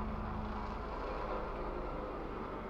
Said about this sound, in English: But I muted because it was like a loud helicopter.